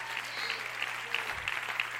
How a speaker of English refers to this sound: And I appreciate the clapping.